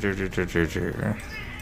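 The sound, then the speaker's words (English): A voice imitates a cat, giving a quick run of four or five short meows followed by a longer wavering mew that trails off, fairly loud. “Let's cast Cat Bolt, and it's a cat, and it's always a cat, and it never leaves, and it's just a cat.”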